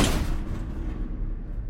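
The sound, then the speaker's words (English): A small sealed door to a crawl space, its seam carved with a pocket knife, is wrenched open with one loud, sharp crack at the start, followed by a fading low rumble. No one speaks. “had yanked the little door open with a loud crack.”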